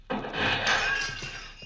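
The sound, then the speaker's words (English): A clay flower pot smashes to pieces with a sudden loud crash, followed by a brief rattling spill of shards, with no voices. “that flower pot is smashed to pieces.”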